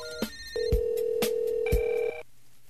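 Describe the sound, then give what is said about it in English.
A phone line ringing on an outgoing call to an online call girl: one steady, buzzing electronic ring tone lasting about a second and a half, with a few faint clicks around it and no one talking. “it's because of this phone call I just made to one of those online Craigslist call girl people”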